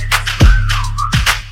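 A sliding whistle tone rises and dips over a heavy hip-hop beat, with two booming bass drops and sharp hi-hat ticks, no one speaking.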